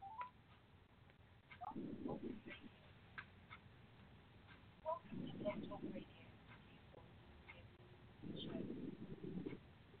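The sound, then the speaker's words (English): Telephone keypad dialing tones as someone dials in to a call-in show, coming through in three short clusters spaced a few seconds apart, thin and muffled as if over a phone line, against a faint background hiss. “Just a second. Calling in.”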